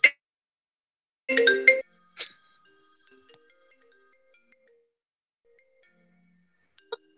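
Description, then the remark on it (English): A phone ringtone plays a short burst of bright electronic tones, then a couple of brief isolated chimes separated by quiet gaps, with no talking. “Get your phone.”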